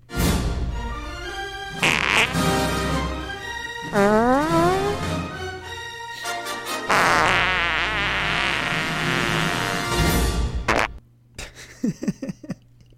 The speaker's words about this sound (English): I feel so smart for knowing things, and then I feel so dumb listening to all those farts.